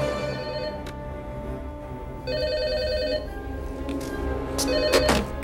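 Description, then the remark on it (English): A telephone rings in repeated bursts, each ring lasting about a second with a pause between, clear over a low background hum, with no one speaking. “The phones are working.”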